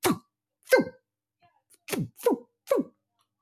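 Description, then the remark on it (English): A voice imitates harpoons firing with five sharp, percussive bursts, each a quick downward-sweeping puff, spaced irregularly with short silences between, no words spoken. “that's I guess the sound of harpoons being shot.”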